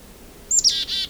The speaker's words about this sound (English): You can hear a second one. Oh. It's a red-breast nuthatch here, too. Right in front of me, red breast.